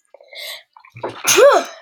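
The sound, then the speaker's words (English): A single loud sneeze: a short sharp intake of breath followed by an explosive, breathy burst that trails off quickly, with no talking. “Bless you.”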